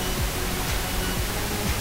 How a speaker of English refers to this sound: Ooh, Static.